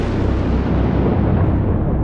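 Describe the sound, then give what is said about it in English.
A lightning bolt strikes a building's metal roof during a storm in Kisii: the thunder crack bursts in loud and booms into a heavy, continuous rumble, its crackling top end slowly dulling over two seconds. No voices are heard. “A sudden bolt of lightning struck the roof and filled the room with a bright flash.”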